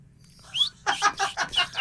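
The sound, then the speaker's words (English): Someone whistles an imitation of cricket chirps: a quick series of about six short, bright, pulsing bursts in an even rhythm, with no talking over them. “Professor … is making cricket sounds.”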